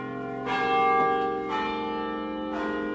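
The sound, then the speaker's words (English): Large university tower bells at UT, which chime every 15 minutes, ring in a steady sequence, each strike blooming into a rich, sustained metallic hum that overlaps the next, loud and resonant with no voices present. “When we hear the tower bells ringing, most of us think nothing of it.”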